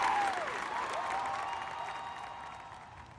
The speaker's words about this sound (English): A great cheer went up along the battlements, and the gates were thrown open before him.